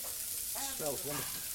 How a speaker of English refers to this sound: This is tuna fish. We're grilling some tuna fish at the moment.